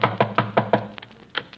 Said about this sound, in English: Go ahead, knock on the door.